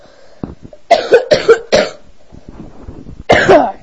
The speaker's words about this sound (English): Jeez. It's a bad cough. Bad coughing.